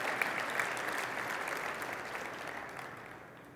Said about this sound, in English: I would like to appreciate the president of the conference and the entire team who have worked so tirelessly to put this together. Can we give them a hand of applause for what they have done? Thank you.